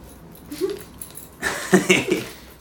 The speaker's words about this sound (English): Clearing my throat.